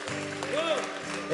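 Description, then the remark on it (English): An audience claps their hands for the Lord in steady, crowded applause, partly blended with voices and sustained tones, swelling louder toward the end. “If you believe that, give the Lord a great big hand clap.”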